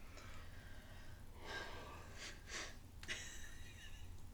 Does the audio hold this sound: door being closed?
no